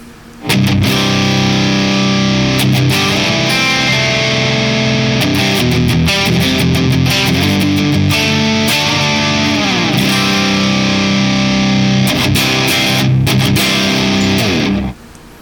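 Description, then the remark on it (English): A heavily distorted electric guitar played through a drone pedal into a Kraken cabinet as a reference tone, ringing out in thick, sustained chords for about fourteen seconds, loud and dense with buzzing overtones, then cutting off abruptly. No one speaks. “And now we have our drone into the Kraken. All right, here's our reference.”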